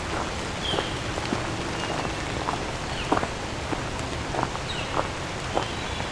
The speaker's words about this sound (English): And a lot of rain. Well, not that much rain. Wouldn't be recording. Some thunder. Presence of trees can really make rain sound louder than it is.